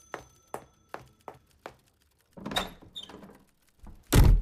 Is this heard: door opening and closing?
yes